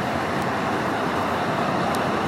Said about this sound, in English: God damn, this traffic.